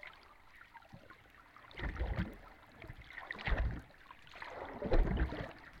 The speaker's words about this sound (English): It was made in a harbor, again with hydrophones, and it captures the natural sounds of the water and the human-made sounds of traffic.